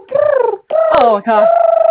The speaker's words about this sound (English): I just knocked the latch off the bird cage.